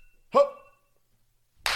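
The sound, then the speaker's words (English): One loud, sharp hand clap with a brief ringing tail, followed by a pause of silence before a burst of breathy noise at the very end. “Oh, that was a good clap.”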